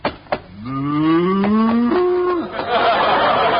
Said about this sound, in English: Oh, no. Wait a minute, mister. This is a cow.